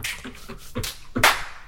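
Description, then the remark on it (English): A few sharp, bright finger-snap and clap sounds from a sample played on a small 2-octave keyboard, irregularly spaced, with the last one the loudest and crispest. No one speaks. “You got finger claps.”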